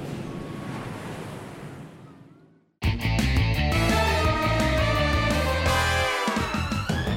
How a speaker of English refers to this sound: The waves are getting faster and larger. What are we gonna do?